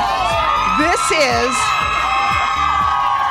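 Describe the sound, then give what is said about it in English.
A studio crowd, the show's biggest on a non-concert day, cheers loudly and steadily, a dense roar of many voices with a few rising and falling whoops and shouts standing out near the start. “This is our biggest crowd on a non-concert day.”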